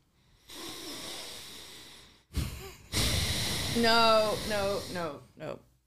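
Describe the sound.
A voice imitates the loud, heavy snorting breathing of a man seated next to the speaker in a theater: a long noisy exhale, a sharp snort, then a harsh rasping inhale that slides into a groaning vocal tone, forceful.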